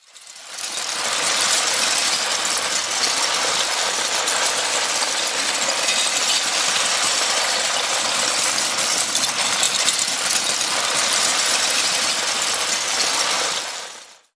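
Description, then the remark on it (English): A dense, continuous clatter of thousands of LEGO bricks cascading down together, a steady rattling rush that fades in quickly, holds at an even loudness for about thirteen seconds, then stops. “as you hear thousands of LEGO bricks cascading down together.”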